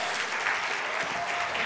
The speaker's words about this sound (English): Can y'all clap it up for volunteers?